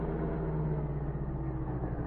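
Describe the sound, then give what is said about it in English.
A chauffeur-driven car engine idles, stopped at a barricaded road at a border station in the dark. A steady low rumble with a droning hum holds even and unbroken for about two seconds, with no voices. “hours later, the general's car approached the border station.”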